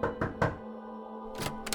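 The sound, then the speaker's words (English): Three firm knocks in quick succession on the door of a second-floor corner apartment at 1435 Commonwealth Avenue in Boston, Albert DeSalvo's visit in June 1962, then a short pause and two more knocks, over a low, steady background drone. “He knocked on the door”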